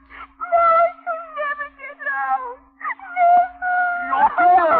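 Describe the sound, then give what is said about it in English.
Loud, wailing sobs in long drawn-out, warbling cries with a few gasping breaks, the pitch wavering up and down like a distraught person blubbering, with a steady low hum underneath. “But no blubbering, please.”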